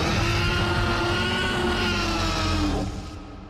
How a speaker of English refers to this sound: So that obviously is the iconic T-Rex roar from Jurassic Park. Yes, it's awesome. And that's a mix, by the way, Taylor, of an elephant, an alligator, and tiger sounds.